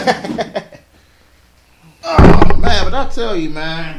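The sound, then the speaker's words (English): After brief talking and a quiet pause, a door opens with a sudden heavy thunk, followed by a loud, drawn-out wavering creak that fills the rest of the moment. “He's our door opener. He's about to open it now.”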